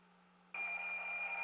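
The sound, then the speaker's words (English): After a brief low hum, an alarm clock bell abruptly starts ringing, loud, a continuous shrill metallic clatter that keeps going without pause until the end. “Damn, turn the clock off.”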